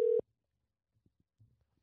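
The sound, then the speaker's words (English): A short, loud electronic telephone tone sounds once at the start, a steady beep as an outgoing phone call is placed from a plugged-in setup, then cuts off into near-silence with a few faint clicks and soft bumps. “We're all plugged in here, so this should start ringing.”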